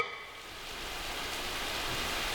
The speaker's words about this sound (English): It's raining a mean green rain. The kind that only falls in the movies.